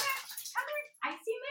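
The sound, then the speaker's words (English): A small dog, Missy, a puppy from Shelter Hope Pet Shop, whimpers, letting out a few short, high-pitched whines in quick succession, each breaking off before the next begins. “She's my Shelter Hope Pet Shop puppy.”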